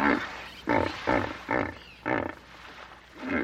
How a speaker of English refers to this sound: And I watched them over and again make their loud sounds, this wonderful bellow sound that the hippo makes.